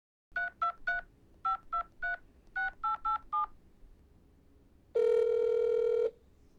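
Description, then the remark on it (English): A woman who has pulled her car over calls her father. Eleven short two-tone telephone keypad beeps tap out the number in three quick clusters, followed by a single longer, louder steady tone as the call connects. “She pulled the car over, called her dad, and hit record.”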